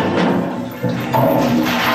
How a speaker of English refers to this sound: do your toileting at your leisure, pull the rabbit's foot-handled chain and flush for luck!